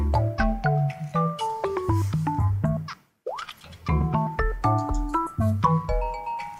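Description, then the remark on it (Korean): Cheerful character creation music from the video game Miitopia: a bouncy, staccato melody of plucky notes over a light bass line, breaking for a moment midway with a quick rising slide before the tune resumes. “자, 지금 나오는 곡은 미토피아 OST의 캐릭터 크리에이션, 캐릭터 생성할 때 나오는 네. 음악입니다.”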